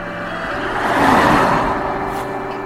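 A car drives past close by, its engine and tyre noise swelling to a peak and then easing back into a steady, lower rumble. No one speaks.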